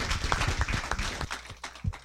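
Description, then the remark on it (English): A brief round of audience applause for the speakers at the end of an American Planning Association program: many hands clapping in a dense, crackling patter that thins out toward the end into a few scattered claps. No one speaks. “Let's have one more round of applause for our speakers.”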